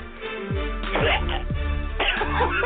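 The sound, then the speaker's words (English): A man coughs hard several times in a row in a stadium, roughly four deep, rasping hacks about half a second apart, loud. “And there is a pause throughout the stadium as this man sounds like he just coughed up a lung.”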